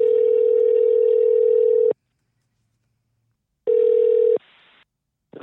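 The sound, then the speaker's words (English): A loud, steady telephone dial tone hums for about two seconds, cuts out, returns briefly, then gives way to quick, quieter dialing sounds as a phone call to Chris Kimball is placed. No one speaks. “And so we're ready to get Chris Kimball on the phone?”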